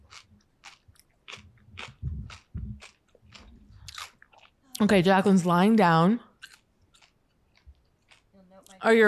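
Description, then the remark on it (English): Crisp crunching bites and chewing repeat in an uneven rhythm for several seconds, followed by a loud stretch of harmonic vocalizing and a brief bit of speech near the end. “Obviously, we'll cut the crunching, the chewing, it's awful.”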